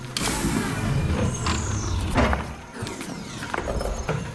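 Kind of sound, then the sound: machine, mechanical door opening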